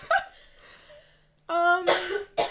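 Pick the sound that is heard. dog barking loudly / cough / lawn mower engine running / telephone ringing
cough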